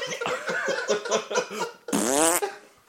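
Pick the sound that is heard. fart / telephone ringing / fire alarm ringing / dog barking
fart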